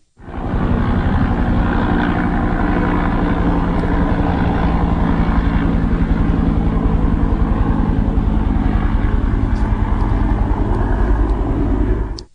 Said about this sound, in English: Here comes a helicopter.